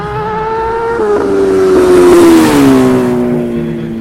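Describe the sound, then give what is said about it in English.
A car spinning donuts on a frozen lake: a strained, steady engine whine swells with a rushing hiss of spinning tires, then dips slightly in pitch and eases off. No one speaks. “Look, there's a car out there spinning donuts, which I don't know that that's safe.”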